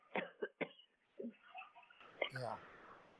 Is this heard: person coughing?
yes